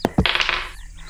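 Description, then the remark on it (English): Two sharp clacks, then a quick burst of rattling clatter as dice tumble across a hard surface while a couple of rolls are made, lasting about half a second before settling into quiet. “Okay, let me just make a couple of rolls.”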